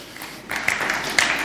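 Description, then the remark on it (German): Restrained audience applause for a speaker's proposal of offensive social liberalism: a sparse patter of scattered claps swells in after a quiet half second and continues at a modest, even level, with no voices. “Das ist der verhaltenste Applaus, den je ein Vorschlag von mir bekommen hat.”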